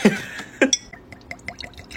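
Mesquite Fire brown tequila being poured for a shot without a shot glass, opening with two soft thuds and then a run of small, quick, pitched glugs and drips that grow fainter. No one speaks.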